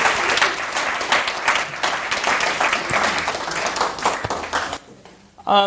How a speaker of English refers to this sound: So let's give him a bit of a round of applause.